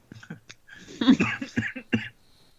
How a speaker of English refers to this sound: Oh no, I coughed into the Skype. Everyone disinfect your Skype.